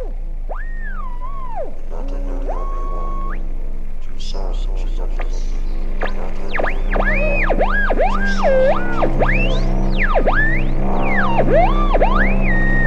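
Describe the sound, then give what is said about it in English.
Steady static with a low hum running underneath, through which a warbling, garbled voice-like sound rises and falls in sweeping glides, becoming busier and more insistent toward the end. “There's a voice hidden in the static.”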